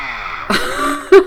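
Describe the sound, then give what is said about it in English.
A chainsaw sound effect: a harsh, buzzing engine drone that surges abruptly partway through, then ends in a short, loud rasping burst. No one speaks over it. “Oh, chainsaw. Chainsaw.”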